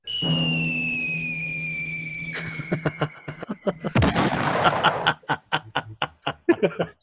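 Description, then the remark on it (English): A cartoon-style Wile E. Coyote falling whistle glides steadily downward in pitch for about two seconds, then breaks into a noisy burst and a run of quick, rhythmic snickering laughter. “Okay, so those that didn't, there was a little bit of Wile a E. Coyote. fall.”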